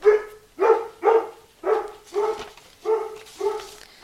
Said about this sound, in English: Sorry about our dogs, guys. Yeah. We got chickens, we got a pig, we got dogs. It is never quiet in this house.